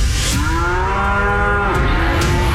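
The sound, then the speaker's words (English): A cow moos in a long, drawn-out low bellow lasting a couple of seconds, loud, with steady outdoor background noise and no talking. “It's Cow Clips of the Week.”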